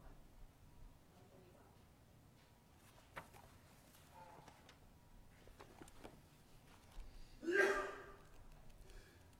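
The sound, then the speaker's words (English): During a worship service, as a hymn is being chosen from a hymn book, a single loud, sharp sneeze bursts out after several seconds of quiet rustling and faint clicks, then the room settles back to a low murmur. “Bless you.”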